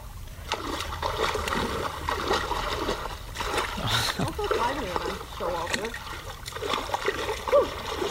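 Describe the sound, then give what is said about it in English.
Steady splashing as a woman dances and wades into shallow water, with irregular bursts of churning water and faint voices talking in the background. “She's dancing into the water.”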